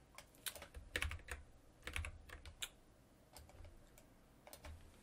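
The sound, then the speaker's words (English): Irregular clicking of keys being typed on a computer keyboard, fairly quiet, coming in short bursts with brief pauses and a few sharper taps standing out. “Is that my keyboard?”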